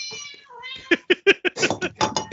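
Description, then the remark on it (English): Cats meow loudly and insistently while being fed, a string of short, rapid overlapping cries building into a clamorous chorus after a few drawn-out opening calls. “Just your cats meowing.”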